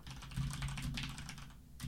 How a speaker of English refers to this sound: You're going to hear my keyboard click, so I'm looking something up.